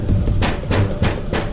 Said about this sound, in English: Was I still asleep? Had I only thought I heard the scratching? What was it that scratches like an animal but knows how to knock just like a man?